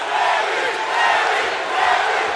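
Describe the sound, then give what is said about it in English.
A large wrestling crowd in 1997 roars and cheers steadily for Larry Zbyszko as he and Scott Hall threaten to get into the ring, a loud, dense wall of voices that swells in waves, with no one speaking over it. “It got Larry Zbyszko over with this crowd.”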